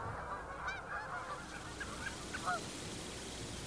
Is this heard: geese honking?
yes